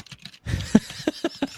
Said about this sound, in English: Let me take a quick look to see. Quick tappy tappy on them like keys.